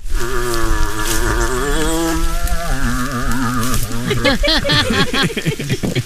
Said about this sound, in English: It's a moose!